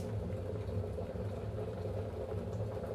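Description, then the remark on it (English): Water bubbles at a steady rolling boil, a dense continuous churning with a low rumble, fairly loud, with no voices. “And the water is boiling.”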